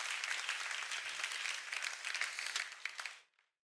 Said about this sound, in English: Why don't you guys give yourselves such a, you know, another hand of applause? You guys are amazing people.